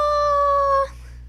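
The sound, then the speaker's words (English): A puppy named Leo lets out one high, steady whimper that holds for under a second and then cuts off abruptly, with no talking. “He's such a cute Leo guy. Is the cutest little pup.”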